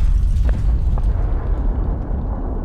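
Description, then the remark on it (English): A deep, sustained rumbling roar of a massive explosion, the 15-megaton Castle Bravo nuclear device detonation, heavy low-end energy rolling continuously with a few sharp crackles near the start, loud and unbroken throughout. “But when they detonated the device, the payload was larger than anyone expected.”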